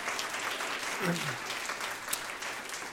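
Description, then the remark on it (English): An audience applauds for children and for those who put a video together, with steady, dense clapping that holds at an even level throughout, and a brief voice or cheer rises over it partway through. “Can we give another round of applause for those wonderful kids and those who put the video together?”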